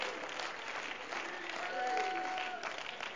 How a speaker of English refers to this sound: Oh, clap your hands and let's praise the Lord together.